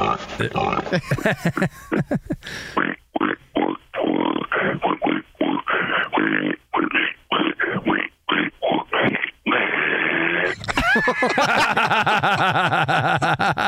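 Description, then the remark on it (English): A person imitates a pig, loud, with a long run of rough, rhythmic grunts and snorts, then ends on a higher, squealing oink-like vocal sound. “The pig is back”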